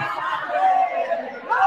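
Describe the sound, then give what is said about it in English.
A dense murmur of crowd chatter, many overlapping voices blending into a steady, fairly loud wash, with occasional brighter rises and a hint of light laughter. “The crowd sounds better.”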